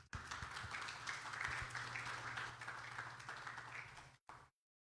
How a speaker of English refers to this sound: So would you give him an applause and welcome him up here?